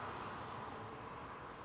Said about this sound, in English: Oh, here comes a car.